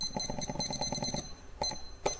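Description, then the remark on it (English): A rapid run of short electronic beeps from a kitchen timer being set for 10 minutes while cooking pasta, fairly loud, followed by a pause and two more brief separate beeps as buttons are pressed. “Okay, my timer for 10 minutes is on.”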